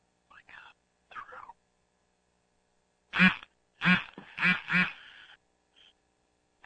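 duck quacking

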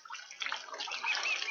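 flowing water

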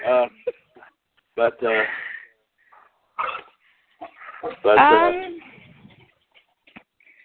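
dog barking and whimpering

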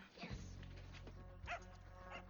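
dog whimpering and barking

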